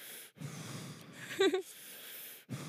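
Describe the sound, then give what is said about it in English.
A person imitates heavy, wheezy breathing into a microphone: long, rough, noisy breaths in a steady rhythm, with a brief voiced snorting catch in the middle. “Sometimes when you hear like really fat people on podcasts, you can hear them breathing like that.”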